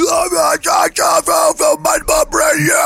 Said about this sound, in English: do your best guttural growl.